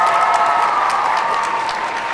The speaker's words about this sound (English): let's give all of our hall cosplayers a big round of applause. Great job, guys.